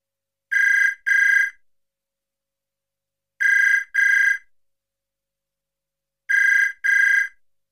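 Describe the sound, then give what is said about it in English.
A house telephone rings in three double bursts, each pair of bright trilling rings separated by a few seconds of silence, clear with no voices. “He didn't pick it up straight away. Why would he?”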